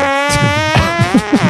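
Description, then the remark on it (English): A long, sustained fart, a buzzy, reedy tone with many harmonics that holds steady, jumps slightly in pitch midway, then sputters in low rhythmic pulses toward the end. No talking. “That was a long, sustained fart.”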